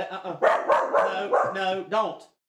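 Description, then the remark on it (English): A dog barks in a quick series of about five or six loud yaps, each bark short and sharp, with little pause between them. “Are you going to dog sit again?”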